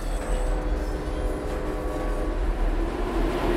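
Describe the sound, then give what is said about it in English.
A steady, loud rumble of a subway train car carrying SeatGeek ads rolling along the rails, with a continuous low roar, faint metallic whine and squealing tones, and no voices. “Turns out there are SeatGeek ads on this subway car.”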